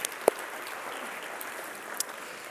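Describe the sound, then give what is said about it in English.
A church audience at North Boulevard claps together during a minister's sermon in a steady, dense patter of applause, with a couple of sharper individual claps standing out at the start and near the end. “You can clap.”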